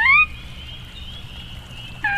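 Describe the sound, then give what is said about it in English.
A sora rail, also called the sora or sora crake, a member of the rail family, gives two short, bright, squealing calls about two seconds apart, joined by a thin, faint high whistle, over a low steady rumble. “It's the sora, sometimes called the sora rail or the sora crake, the most abundant and widespread rail in North America, though it's more often heard than seen.”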